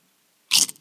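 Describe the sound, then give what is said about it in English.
A single loud crunch of someone biting into a crisp chip, a sharp bright crackle lasting a fraction of a second after silence, with no talking. “Whoa. That's a big crunch. Dude, that was some loud crunch.”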